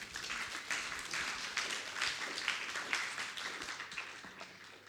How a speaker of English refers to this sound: Thank you. Thank you. Let's give her a clap, huh?